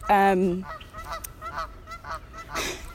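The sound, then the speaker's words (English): A loud, nasal duck-like honk sounds close by, followed by a few quieter, shorter honks and calls over a faint background murmur. “It's like a duck beside me.”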